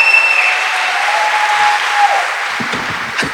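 Loud, steady applause from a church crowd welcoming a speaker out to give the message fills the whole stretch, with sharp high-pitched whistles ringing out over the clapping and a few scattered shouts of cheering near the end.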